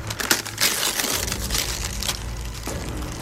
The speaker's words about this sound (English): I tore the wrapping back further.